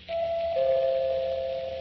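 A two-note front doorbell chime rings once at a home in a well-to-do suburb of a large eastern city, a higher tone dropping to a lower one that lingers. It is clear, over a faint background hiss, with no voices.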